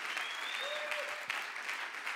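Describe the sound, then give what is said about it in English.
A crowd cheers and applauds loudly and continuously for God at a ten-year anniversary celebration, a dense wash of clapping with whoops and high whistles rising above it, without pause. “Let's give God a huge cheer.”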